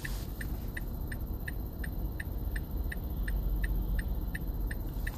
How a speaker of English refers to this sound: You hear my signal light. You hear vehicles go by. You hear the underlying drone hum of my engine, of my air conditioner, of the engine changing and revving gears.